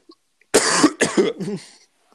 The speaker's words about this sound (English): Now, sorry, I've got a coughing fit here.